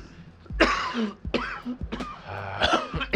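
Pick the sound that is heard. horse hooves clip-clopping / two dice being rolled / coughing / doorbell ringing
coughing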